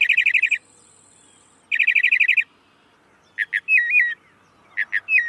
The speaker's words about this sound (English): Mockingbirds sing all year. In the breeding season to attract mates, the rest of the year to claim feeding territories. In spring, a male mockingbird sings all day, hundreds of variations, then sings all through the night.